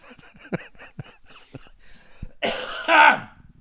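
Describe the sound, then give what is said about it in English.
Rapid throat-clearing rumbles build into a loud, harsh burst of coughing near the end, hoarse and raspy, with no talking around it. “Anyway, I am coughing less.”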